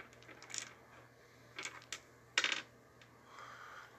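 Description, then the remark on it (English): Dice clatter and tumble across a tabletop in three short bursts of rattling clicks, fairly quiet, with no talking. “Whoop, I rolled the wrong dice.”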